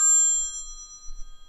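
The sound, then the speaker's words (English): A mobile phone ringtone for an incoming call from a hospital, Southeast Georgia Health System, sounds as one bright, bell-like electronic chime that rings out clearly and slowly fades over about a second, with no voices. “Oh, snap. They calling me.”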